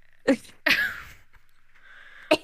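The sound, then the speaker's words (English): Several sharp, explosive, loud coughs, two close together and then one more after a short pause, with a faint steady whine in the background and no talking. “just starts coughing.”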